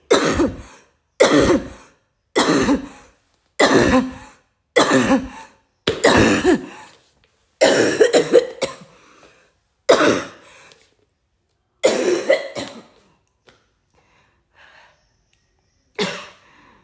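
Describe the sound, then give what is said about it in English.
A person coughs forcefully about ten times in a steady series while praying, coughing out in Jesus' name, then the coughs slow and fade into raspy throat clearing with longer pauses and a final short cough. “By the authority in the name of Jesus Christ, I cough out and I vomit any food that I've eaten in the dream.”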